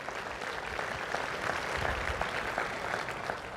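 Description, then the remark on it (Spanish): Steady applause from a crowd, given for the Lord, fills the whole stretch, a dense wash of many hands clapping at an even loudness with no voices rising above it. “Den un aplauso al Señor, den un aplauso al Señor, que se lo merece.”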